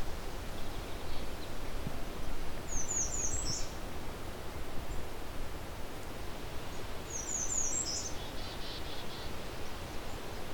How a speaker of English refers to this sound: I believe this is a Canada warbler. It was a very short version of the song. We're in the right kind of territory.